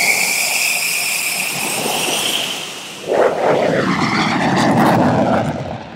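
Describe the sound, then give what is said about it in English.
The engine of an F-16 Viper fighter jet roars continuously in flight, a high turbine whine over a dense rush that swells into a heavier, rougher thrust about halfway through. “For an aviation enthusiast with the childhood dream of flying in a jet like this, it should leave a pretty big impression on me, too.”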